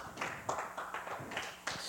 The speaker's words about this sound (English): Give the Lord an applause right there where you're at.